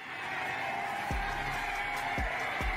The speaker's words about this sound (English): All right, you might be hearing some crowd noise. You might think that this is Rams fans celebrating. It's not. It's Bengals fans welcoming Zach Taylor and crew back home.